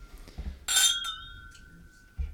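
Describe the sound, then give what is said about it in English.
A single bright glass clink from glasses raised in a whiskey toast rings out, its clear tones sustaining and slowly fading over a second or so, with faint background movement and a soft thump at the end. “So raise your glass. Cheers to Jesus. Cheers.”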